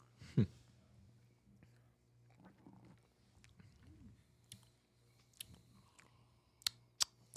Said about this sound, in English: I'm going to need another sip of that.